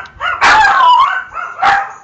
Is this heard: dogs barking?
yes